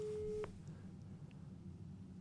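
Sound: phone ringing tone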